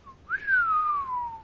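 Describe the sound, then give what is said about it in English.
A single clear whistle from a person, starting with a short low note, then a long tone that slides gradually downward and fades, fairly loud with no talking. “That was me whistling.”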